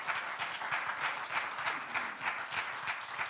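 An audience applauds steadily, many hands clapping together in a dense, even wash of sound that holds at a moderate level throughout, with no voices standing out.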